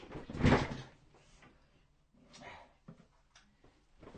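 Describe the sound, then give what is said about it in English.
A chair creaks and springs back as someone rises from it: a loud rattling thump at the start, then a few softer squeaks and knocks as it settles. “And note to self, listeners, I need to get a chair that doesn't actually bounce as soon as I stand up from it.”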